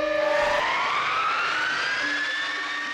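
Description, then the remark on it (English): A large cargo aircraft, big enough to fit six Apache helicopters inside, its engines giving a loud, high-pitched scream over a steady roaring rush, the whining tones slowly rising in pitch for the whole three seconds. No one speaks. “Most people would describe it as a screaming sound.”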